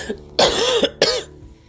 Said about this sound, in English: I'm going to have to edit out my coughs and sniffles because I have allergies today.